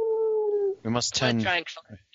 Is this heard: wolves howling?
yes